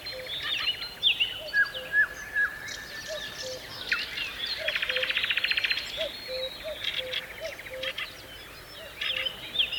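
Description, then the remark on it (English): A dense dawn chorus of many bird species in the Chernobyl exclusion zone, recorded by sound artist Peter Cusack: overlapping whistles, trills and rapid chattering songs from several directions, with a steady low repeated call underneath and no voices. “We're listening to a stunning recording that Cusack made of a species-rich dawn chorus of birds in the exclusion zone.”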